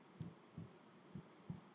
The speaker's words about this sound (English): It's like somebody heartbeating. I was going to say, who heartbeating?